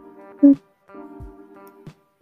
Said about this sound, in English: I have to sneeze.